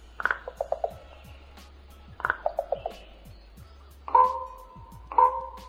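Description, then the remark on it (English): Common raven calls, alone with no talking: two quick bursts of dry, knocking rattles, each a rapid run of about five clicks, then two short, loud, harsh croaks over a faint low hum. “The common raven is an acrobatic flyer and a vocalizer of great variety.”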